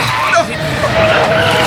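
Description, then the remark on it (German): Jeep tires screech and skid in a sustained, wavering squeal, loud, with a rough rumble of the vehicle underneath. “Hey, Vorsicht, Auto!”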